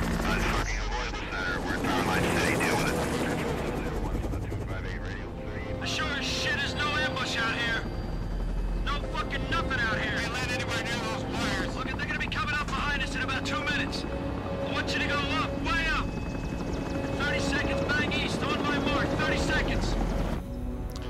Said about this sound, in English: Some cool helicopter stuff.